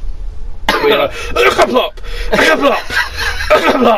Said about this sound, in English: But I've also done the cough.